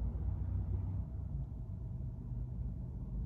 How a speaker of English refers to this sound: Yeah, Matt Fish over there doing a wheelie on the motorcycle just now, if you heard that. Just cruising on by in his canary yellow Harley Davidson.